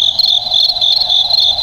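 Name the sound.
cricket chirping sound effect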